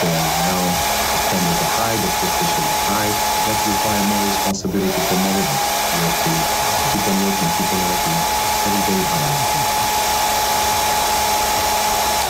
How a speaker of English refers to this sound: Yeah, I'm just going to dry my hair.